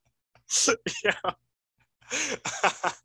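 coughing and throat clearing

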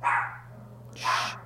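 dog barking

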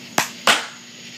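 sync hand clap

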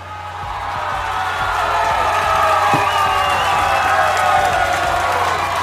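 audience applause and cheering

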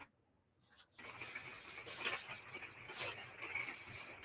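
dogs panting and whimpering

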